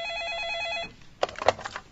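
A telephone at the reception of Dokter Ferreira and Meyer's rooms rings with a steady electronic trill. It stops abruptly, followed by a few soft clicks and handling noises, like a receiver being picked up.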